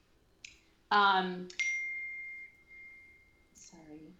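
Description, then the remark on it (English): A phone notification chime: a bright, high single-pitched ding that rings out and slowly fades over about two seconds, with someone speaking briefly just before it and again after. “I'm so sorry, that's my notification.”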